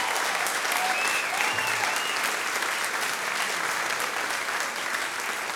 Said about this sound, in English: Or a standing ovation? What will it be? Standing ovation. It can only be one thing.